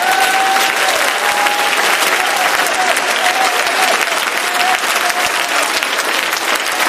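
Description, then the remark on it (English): An audience claps hands in a loud, sustained burst of dense applause, steady throughout, with a faint held tone running beneath the clapping. “Clap your hands with faith.”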